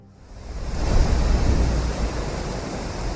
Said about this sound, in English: Strong winds rustled in tall grass as it ebbed and flowed, a vast ocean in sunglow.